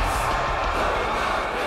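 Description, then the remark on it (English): A large crowd at the Sunside Arena roars and cheers as Thunderstruck appears at the arena entrance, a dense, continuous wall of noise, loud and steady throughout with no clear individual voices standing out. “And the crowd goes wild as Thunderstruck appears at the Sunside Arena entrance like a gladiator of old!”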